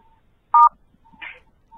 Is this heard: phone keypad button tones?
yes